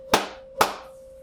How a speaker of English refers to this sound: Okay. Now you clap 3 times. All right. 3, 2, 1, begin.